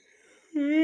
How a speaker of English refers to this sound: That's 2 weeks in a row now where I've yawned mid-show. I just got done making a great telescope joke. And my body was just like, wow, that's fucking boring.